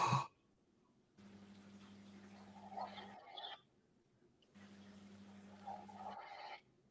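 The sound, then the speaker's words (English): Two slow, faint breaths, each a soft airy rush lasting a couple of seconds with a pause between, over a low steady electrical hum and no talking. “It sounds like someone's breathing.”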